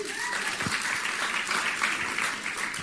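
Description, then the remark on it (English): Audience applause for a performer after a skit fills the stretch, a dense, steady wash of many hands clapping at an even loudness throughout, with no voices standing out above it. “Give him a hand.”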